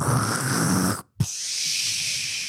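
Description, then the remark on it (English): A person imitates a whale exhaling through its blowhole: a loud, rough, breathy blast, a split-second pause, then a long steady hissing exhale. No words are spoken. “but they come up and because they have blowholes.”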